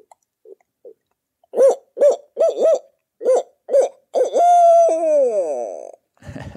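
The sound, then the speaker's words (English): A person imitates a bigger barred owl with a deep voice, giving a rhythmic series of hooting notes that build into a long, drawn-out descending call, fairly loud. “The global premiere of the … barred owl.”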